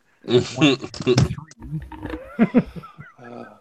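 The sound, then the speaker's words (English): A toy monkey giggles and chatters electronically at Kappa Sigma Lodge in a run of loud, squealing bursts, uneven in rhythm, with a brief pause before a final warbling burst. “One giggling monkey.”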